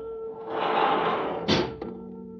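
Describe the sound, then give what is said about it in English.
Elevator doors in a museum slide with a steady mechanical whoosh, then shut with a sharp clack and a soft thud, all against a low electrical hum. Moderately loud, with no voices. “I heard the elevator doors open and close.”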